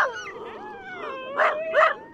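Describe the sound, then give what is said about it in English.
A pack of sled dogs howls and whines together in overlapping, wavering tones, then two sharp barks break through near the end, moderately loud with no talking. “And keep alive at least the sound, that deep-throated growl, the barking howl of the team.”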